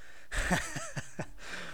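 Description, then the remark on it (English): Someone takes a quick sip of water while live streaming: a soft slurp followed by a few quick swallowing gulps, then a faint breath afterward. “Need to have a quick sip.”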